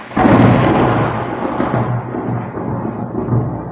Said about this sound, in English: Did you hear that? That was a thunderstorm. I feel like heavens actually are in support of what I'm saying.